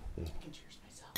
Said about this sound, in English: Give me cheers. Ooh, that was hard. I know. That makes me nervous with these glasses.